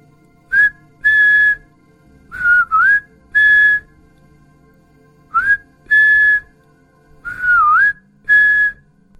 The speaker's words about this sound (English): I sat and we waited. At exactly 3:03, we heard the whistling.